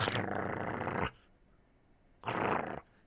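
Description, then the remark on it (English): A pink poodle growls in two rough, rumbling bursts, a long one followed after a pause by a shorter one, fairly loud with no talking. “The poodle growled.”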